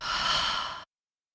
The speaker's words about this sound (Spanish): Tome una gran respiración. Inhalar. Exhalar.